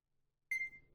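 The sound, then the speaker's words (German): A single short electronic beep from a barcode-scanner app as the barcode of a Pantene Pro-V shampoo is held to the camera, with a bright, steady tone, sharp at the start and fading quickly. Nobody speaks, and a faint low background hum sits underneath. “Ich halte den, dass man das hört, den Scan-Code in die Kamera.”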